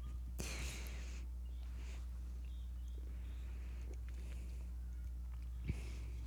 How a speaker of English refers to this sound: I'm going to take a sip and just... If I'm able to take a sip and not spill, then I know we're good.